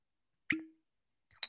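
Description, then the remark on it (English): A wine cork pops out of a bottle with a sharp, hollow plop and a short ringing tail, followed about a second later by a softer clink or rustle. “So let's give a cork pop and a decantered pop.”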